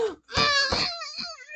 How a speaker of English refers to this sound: Stop moaning.